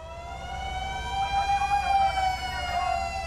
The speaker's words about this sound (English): The government has developed a sophisticated earthquake warning system that can sound an alarm a few precious seconds before the most destructive waves of an earthquake hit.